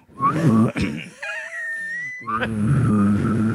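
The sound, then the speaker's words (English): A voice produces a deep, raspy throat-singing growl in sustained, loud bursts, with a thin whistling overtone gliding above the drone partway through, then the rough growl returns. “Yes, and then while you're doing that, another thing is growl.”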